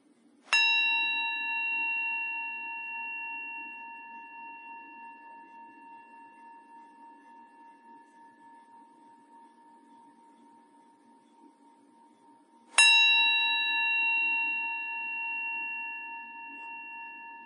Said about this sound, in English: And let's begin by receiving the sound of the bell. I'll ring it 3 times.